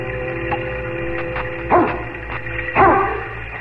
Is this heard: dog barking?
yes